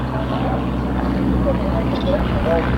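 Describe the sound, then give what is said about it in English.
Droning propeller engines of Tiger Moth biplanes pass overhead at Lobethal with a steady, loud hum that rises and wavers, and indistinct speech murmurs beneath the engine noise. “Aeroplane's going over now. Tiger Moths, in fact.”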